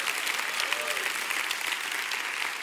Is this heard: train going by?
no